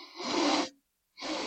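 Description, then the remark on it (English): Exaggerated, loud sniffing of food in a bowl that has been picked up: one long noisy inhale, a short silence, then another strong sniff. No one speaks. “I love how you're sniffing dramatically.”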